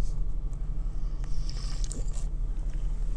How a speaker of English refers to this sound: No, I couldn't wait till I was done recording to slurp that coffee. That just had to happen. Mouth was getting kind of dry.